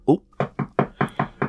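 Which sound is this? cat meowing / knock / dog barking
knock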